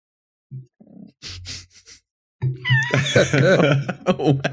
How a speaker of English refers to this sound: Go away. Sorry, my cat.